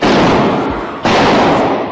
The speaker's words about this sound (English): The gunshots sparking panic in the pews. Worshippers seen ducking for cover. One man covering his wife with his own body.